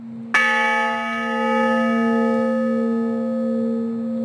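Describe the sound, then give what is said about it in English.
A single deep strike of an honor bell, tolled as a final tribute at a veterans' funeral, rings out clearly, its rich metallic tone sustaining and slowly fading over several seconds, with no voices present. “Oliveira created the Honor Bell Foundation. Its work continues to ensure veterans have a proper final tribute.”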